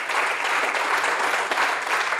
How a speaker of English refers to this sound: Can we clap, by the way, and just thank Pastor Chet?